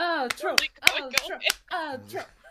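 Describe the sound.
About five sharp, fleshy slaps of buttock cheeks clapping together land in quick, slightly uneven succession, loud, while a voice makes drawn-out vocal sounds around them.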